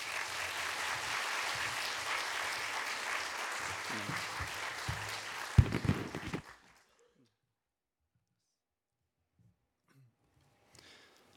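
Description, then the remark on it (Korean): An audience applauds warmly to welcome a pastor coming up to preach, a dense, steady wash of clapping lasting several seconds before tapering off with a few scattered claps and a brief thump, then near silence. “우리 목사님 나오셔서 광야길을 걷게 하시는 하나님이라는 제목으로 말씀 전해 주실 텐데 따뜻한 박수로 맞이해 주시겠습니다.”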